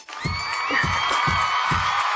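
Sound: applause and cheering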